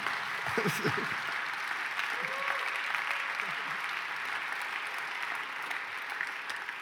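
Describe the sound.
An audience claps steadily for several seconds, a dense, even wash of applause with a few voices briefly audible early on.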